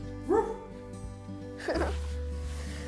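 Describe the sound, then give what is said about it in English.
A puppy named Daisy lets out two short, high-pitched yips and barks, spaced about a second apart, over a steady low background hum with no one talking. “My puppy Daisy.”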